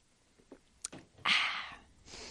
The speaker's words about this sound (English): Oh, I got to get a sip of water first, though.